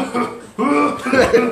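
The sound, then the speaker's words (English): A voice imitates the sputtering, coughing engine of a bad car struggling up a parking-lot ramp, with two rough, throaty bursts, fairly loud, the second one longer and more strained. “So it was like that cartoon car, like the fucking Mickey Mouse shit. Like you're just coughing and shit.”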